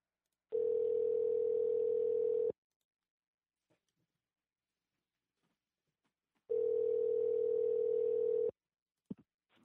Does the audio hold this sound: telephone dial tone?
yes